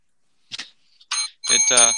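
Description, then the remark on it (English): A small bell rings out in a few quick, bright strikes, the last one ringing on with a sustained metallic shimmer, with what sounds like a voice underneath. “Go ahead, and I will have the bell ready and cut you off if needed.”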